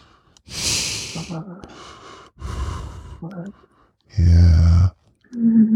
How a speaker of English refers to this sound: Feel my nose. Feel my nose fucking breathing, my nostrils breathing on it.